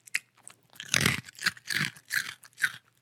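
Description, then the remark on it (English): A dog crunches and chews a hard biscuit, with a quick run of loud, crackly bites in an uneven rhythm, no voices over it. “Okay, he's swallowed the biscuit.”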